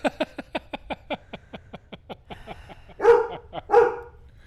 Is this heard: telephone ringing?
no